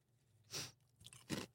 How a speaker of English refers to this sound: So we're trying this gingerbread toast crunch.